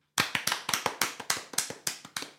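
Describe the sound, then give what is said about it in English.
A quick burst of hand claps, about a dozen sharp, bright slaps in a fast, steady rhythm lasting a couple of seconds, with no voices. “Hand clap.”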